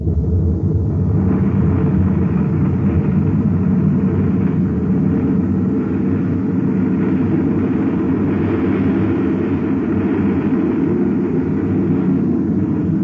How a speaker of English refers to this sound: Now to fire rockets and get away from this uranium bombardment.